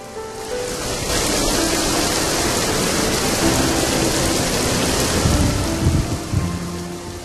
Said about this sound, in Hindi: बाहर बहुत सुहाना मौसम था। रिमझिम रिमझिम बारिश हो रही थी।